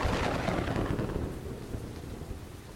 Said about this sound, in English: General Ulysses S. Grant is hunkered down at his headquarters at Savannah, Tennessee. Yes, Tennessee. You heard that right. As a storm rages.